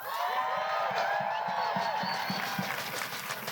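A crowd at a pro-Palestine rally in the East Bay cheers and applauds steadily for a speaker, a dense wash of clapping with shouts and whoops rising above it, loud and sustained for the whole few seconds.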